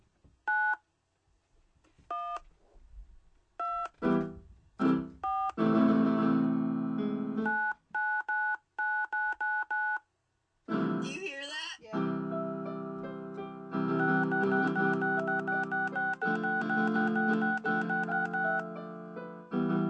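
A telephone number is dialed on a touch-tone keypad to call a friend's mom: a run of short, steady beeps, then longer held tones and a dense burst of overlapping tones, loud and with no talking.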